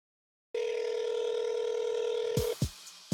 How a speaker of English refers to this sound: Yo, they're not picking up the phone. So we're going to go ahead and end this call.